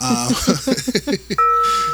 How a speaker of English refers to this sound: please ring the bell of shame for me. I'm sorry, I've done it again.